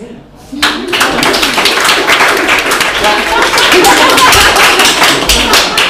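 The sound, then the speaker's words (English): An audience bursts into applause after a brief quiet moment for a panel of performers, including a clown and a drag, burlesque and cabaret performer, many hands clapping in a dense, steady, loud patter that holds without letting up. “Yes, all, every single one of them incredibly deserving of applause.”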